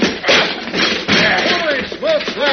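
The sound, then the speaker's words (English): A heavy oak door in an underground chamber is smashed in as Superman throws himself against it: two loud, dull crashes over a rough, noisy clatter of splintering wood, with raised voices cutting in toward the end. “He's busted down the door.”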